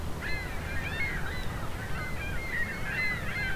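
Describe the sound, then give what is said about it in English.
A flock of gulls calling continuously, many overlapping nasal cries rising and falling at once, moderately loud and steady against a low background rumble, with no one speaking. “These gulls are rather incessant.”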